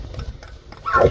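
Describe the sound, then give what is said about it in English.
A bull elk, chin raised, lets out a short, rising trumpeting call at the end, a loud tonal squeal over a low background rumble, with no voices. “Like he puts his chin up, you know, and just does trumpets.”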